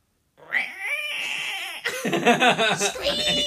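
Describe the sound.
A person imitates a Mongolian death worm's scream: a loud, high, catlike screech that holds one wavering tone, then breaks into a rapid, jittery string of shrill, warbling cries.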